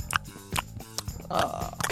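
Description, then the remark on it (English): Someone chewing on the microphone as a sound effect: wet, smacking chewing noises pressed right against the microphone, with irregular crunchy clicks and muffled squelches in bursts, loud and unaccompanied by speech. “You were trying to do a sound effect, and I thought you did it quite well.”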